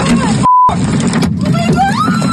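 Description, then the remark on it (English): Grapefruit-sized hail hammers a car near Gasoline Alley in a dense, continuous clatter of hard impacts, loud throughout, with a short electronic beep early on and people's voices talking over the din. “Yeah, like grapefruit-sized hail coming down, pummeling the car.”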